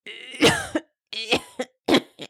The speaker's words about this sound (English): That cough did not sound good. The king held his chest while he coughed a bit more.